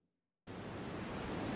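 A steady, loud burst of white noise hiss switches on abruptly after a moment of silence and holds constant and unchanging, with no voices or other sounds.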